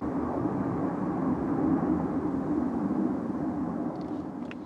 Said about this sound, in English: Cannot get a break from these planes, man. Oh my goodness.